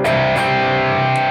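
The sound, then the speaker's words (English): A distorted electric guitar with a low-gain, slightly honky fixed-wah tone, like a guitarist's sound, rings out in a sustained chord, re-struck a couple of times, loud with no talking. The unit's three-way high/low switch is set to the middle. “Yeah, that's a cool sound, kind of a lowish gain distortion.”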